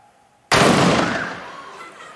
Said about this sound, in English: Load the cannon. I get ready, lock on, aim, fire.